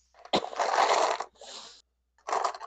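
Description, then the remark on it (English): Small mini dice, ten-sided (D10), rattle and clatter across a hard surface in three bursts: a loud, sustained roll, a softer follow-up rattle, then a short pause before one more brief clatter. No one speaks. “So ignore the sound of my mini dice.”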